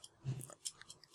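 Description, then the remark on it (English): A ballpoint pen clicks several times in quick succession, faint, crisp taps at a steady, clock-like pace with no voices over them. “clicking the pen”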